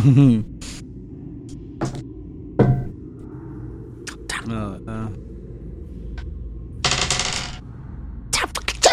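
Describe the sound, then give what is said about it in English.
Dice clatter across a hard table in several sharp bursts of rattling clicks, some brief and one longer tumble, with people talking quietly in between, as players roll for a charisma check in a tabletop role-playing game. “My fucking dice”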